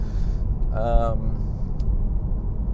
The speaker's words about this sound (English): Now the next task is to sell this car that we're driving, the 911.